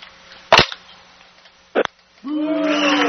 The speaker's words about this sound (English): Well, what with the booing, man? What was that about? Hit the wrong button there. That's all it was. I wasn't trying to boo, just hit the wrong number.